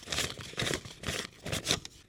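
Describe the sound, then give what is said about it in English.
Crisp crinkling of paper dollar bills, rustling in a series of quick, bright bursts roughly every half second, with no one speaking. “And then paper dollar bills, like the ones we use today.”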